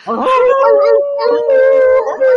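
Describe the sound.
A single loud, drawn-out wolf howl holds a steady pitch with a slight waver for a couple of seconds, clear, with no talking over it.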